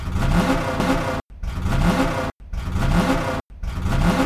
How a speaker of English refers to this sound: here's four revs for Kevin Harvick